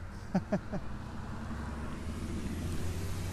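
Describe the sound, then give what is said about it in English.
A bus rumbles past behind people standing at graves in a cemetery, its deep, steady engine drone filling the scene after a few quick knocks at the start. “Well, Adele, pause for the bus that's behind us.”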